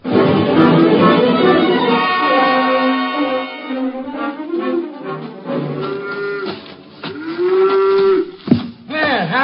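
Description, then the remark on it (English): A cow on a farm moos loudly and repeatedly at milking time, long drawn-out bellows with rising and falling pitch filling the whole stretch, with no talking. “Let go of that cow for a minute,”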